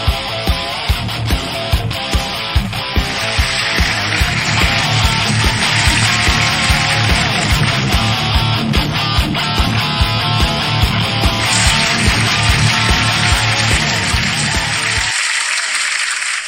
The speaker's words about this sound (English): Here, let's grab some applause from here. Let's do that. Let's see. Applause. Perfect.